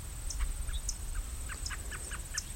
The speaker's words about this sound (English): Catbird's doing a chup, chup, chup.